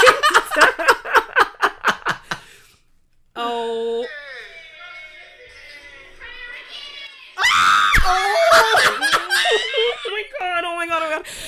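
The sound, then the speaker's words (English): Loud bursts of rapid laughter give way to high, drawn-out shrieking and then a stretch of loud, strained screaming, with a brief pause in between. “Sorry for screaming.”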